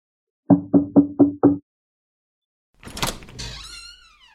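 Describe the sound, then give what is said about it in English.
Five quick, evenly spaced knocks on the door of a woman's house, fairly loud, then a short pause before a burst of scraping and a high, wavering squeak. “All right, here we go. Let's go knock on her door.”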